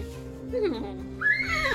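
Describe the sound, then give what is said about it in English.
A person imitates a horse's whinny with a short, wavering vocal neigh that rises and falls, followed by a higher trailing squeal. “I say goodbye to the horse, give it a little kiss, and then I'm going to get in the carriage. There's a little whinny.”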